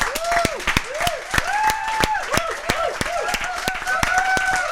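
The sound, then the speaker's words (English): An audience applauds loudly and steadily, with dense overlapping claps throughout and rising whoops and cheers mixed in across the whole stretch. “Keep supporting your local bookstores clap, and library. Clap.”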